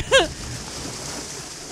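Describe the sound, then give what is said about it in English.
Ocean water laps and washes steadily for a couple of seconds. A brief tonal ding from a buoy bell rings out at the very beginning and fades quickly. “What if I'd stopped it there, like just before the ding? It would have just been the sound of water happening.”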